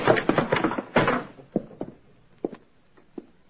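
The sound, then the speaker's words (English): An apartment door at the Baker Apartments being forced open: a second of rough rattling and banging, then a few scattered, sharper thuds and clicks spaced out as it gives way, with no voices. “A formal entrance doesn't pan out, you try an informal one, which I did.”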